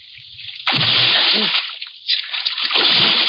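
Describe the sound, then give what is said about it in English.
A loud splash as a person vaults over a rail and plunges into an icy river, followed by churning and sloshing, then a second surge of splashing water. “I ran to the rail and vaulted over into the icy river.”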